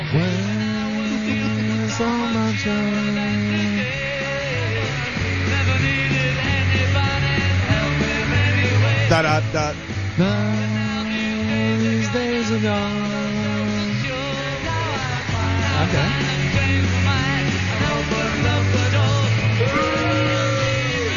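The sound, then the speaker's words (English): Loud, steady rock band music with a crowd of girls shrieking over it the whole time, the high screams blending into the thick, muffled, lo-fi sound with no break. “It's just women screaming and them.”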